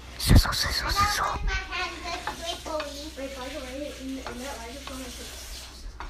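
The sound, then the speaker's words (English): Salted butter sizzles in a hot pan while a utensil stirs and scrapes it until melted, with a sharp clatter at the start and a voice talking over the steady frying hiss. “Ooh, sizzles.”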